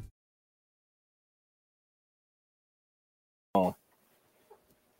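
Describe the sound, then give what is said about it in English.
After near silence, a bird outside lets out one sudden, loud squawking call, then a few faint, scattered chirps trail off. No one speaks. “Oh, they're back on out there. I'm not falling for them. That's a lot of chirp.”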